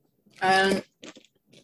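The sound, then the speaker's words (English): A short voiced sound, like a brief vocal reaction, is followed by a few quick, dry crunching bursts of trail mix being chewed, moderately soft and irregular. “I thought that was going to be soft. It was crunchy.”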